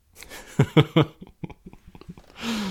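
cough into the microphone

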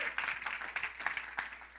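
audience clapping hands

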